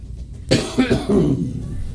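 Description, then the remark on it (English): A forceful cough bursts out suddenly, followed by a few rougher, throaty hacking sounds that trail off over about a second. “My cough is coming back.”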